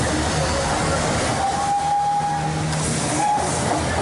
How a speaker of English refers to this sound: There's a steam train pulling in. The last time I rode a steam train in India must have been 80 years ago.